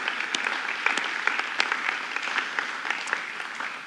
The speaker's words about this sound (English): Come on, guys, let's give all our women in this place a massive cheer for all their hard work. You are amazing. You go, girl.